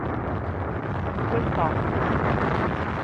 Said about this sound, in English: Engine turbo pumps at quiet speed. Engines at maximum thrust.